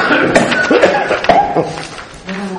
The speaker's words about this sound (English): I'm being done in by my cough for a change.